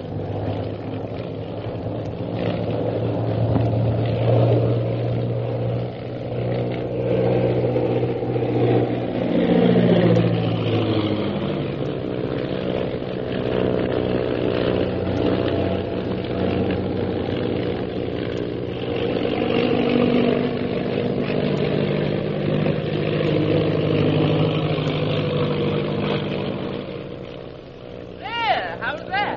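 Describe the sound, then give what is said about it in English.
A loud airplane engine roars continuously, its pitch sliding up and down as the plane swoops and turns in evasive maneuvers to lose a pursuing plane on the way to Shanghai, a steady droning rumble that never lets up. “I don't know that coming up in this plane with you was such a good idea.”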